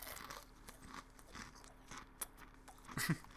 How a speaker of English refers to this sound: So here we go. Yes. I'm gonna moosh it a little bit. It's very crunchy. These are like weird chicken nuggets.